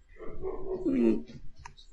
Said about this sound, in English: Here come the dogs.